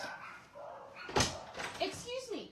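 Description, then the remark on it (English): Household dogs bark a few times, sharp yelping barks mixed with a thump and some background voices, moderately loud. “I feel like I actually have to walk out there and tell my dogs to stop.”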